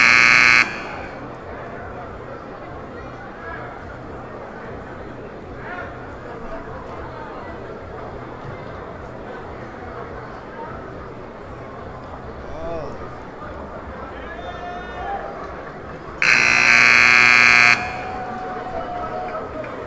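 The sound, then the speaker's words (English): A loud arena buzzer blares twice at a basketball game between Oakwood and WAU, a short blast at the start and a longer one near the end, over a steady murmur of crowd chatter. “They cannot control with this buzzer.”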